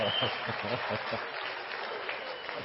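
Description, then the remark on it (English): An audience claps steadily at the Inland Empire Church of Christ: a dense, hissing wash of many hands that stays fairly even throughout, with some murmuring voices mixed in underneath. “If I could see better, I could stare at people not clapping, but I can't see that far anyway, so you're safe, even if you didn't clap.”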